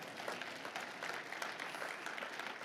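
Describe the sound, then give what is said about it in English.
An audience claps steadily together as a clap offering to the Lord, a dense continuous patter of many hands at moderate loudness, with no voices standing out. “Give the Lord a clap offering.”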